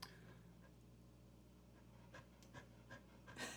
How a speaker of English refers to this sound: You all hear nothing except the dog breathing right now.